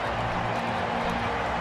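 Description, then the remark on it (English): A record stadium crowd at the MCG cheers after Australia beat New Zealand to become world champions: a dense, steady roar of many voices holds at an even, loud level for the whole moment, with no single voice standing out. “What a great win in front of a record crowd here at the MCG.”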